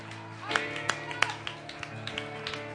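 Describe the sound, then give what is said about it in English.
Sharp hand claps land in a steady rhythm as people clap their hands to the Lord in praise, a few standing out louder than the rest, over a sustained tonal background and low murmuring voices. “Would you clap your hands to the Lord one more time all over this place and give God praise?”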